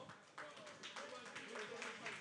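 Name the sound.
audience applause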